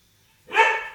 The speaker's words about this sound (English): Whose dog was that? Sorry, we've got two puppies. Oh. They're 8 months. 8 months old. They might bark.